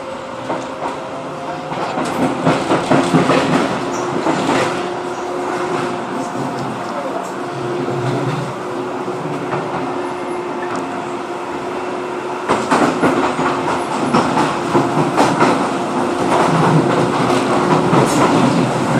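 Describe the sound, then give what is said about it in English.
An automated light rail train runs steadily on its tracks at Poplar, with a continuous rumble, a droning motor hum and irregular clicks and clacks of wheels over rail joints throughout. “Side of the train at Poplar is the DI depot.”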